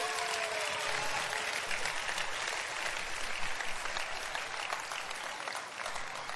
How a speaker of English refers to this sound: Clap for